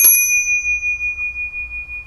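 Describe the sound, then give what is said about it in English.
A small bell is struck once with a bright, clear ding, its high tone ringing on steadily and fading slowly over a faint low rumble. “You have to leave Bill space after ISO Tunes because he wants to ring a bell too.”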